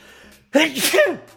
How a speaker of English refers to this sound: I think I'm gonna sneeze.